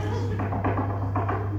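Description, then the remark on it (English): Someone kicking the front door in the morning: several dull, uneven thumps in quick succession over a steady low electrical hum. “And the thing is, he's comfortable with us, so sometimes he'll just start kicking the door.”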